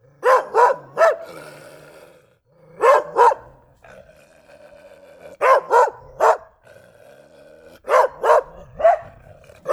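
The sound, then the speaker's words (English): A dog barks repeatedly in short bursts of two or three sharp woofs, separated by brief pauses with a faint low growl or whine between them, loud. “Now, if you'll hold on for just a second, I'm going to go make sure that my dog isn't destroying anything.”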